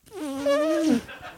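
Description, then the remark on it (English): A single loud, buzzy raspberry blown with the lips against a woman's buttocks, sounding like a fart. It holds a steady, mid-pitched drone for nearly a second, then sags and cuts off, with no talking over it. “I know what to do, so I took my mouth and I put it on her butt, and then I just gave her one of these.”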